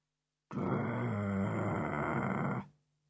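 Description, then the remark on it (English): A person imitates a dog named Timothy growling deeply in its throat in a cave at night: one sustained, rumbling snarl lasting about two seconds, loud, with no other sounds around it. “Timothy was growling deeply, right down in his throat.”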